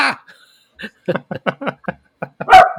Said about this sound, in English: What are you even barking at? He's barking at a removable object, which is the thing.